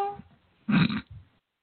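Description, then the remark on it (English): A man imitates a cat's meow: one short, loud vocal meow lasting under half a second, followed by a brief quieter trailing sound, with no other talking. “No, he did not just meow on the show.”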